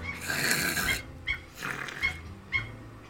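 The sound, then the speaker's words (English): A cat chatters with rapid, raspy clicking and chirping bursts: one long buzzy run, then several shorter staccato bouts with pauses between, fairly loud and with no talking. “I love that cat noise. It's so weird.”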